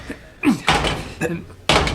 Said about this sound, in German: Aber warum hämmerst du gegen den Radkasten? Willst du durch den Radkasten krabbeln?